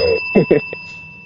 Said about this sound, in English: That was your bell, Ben.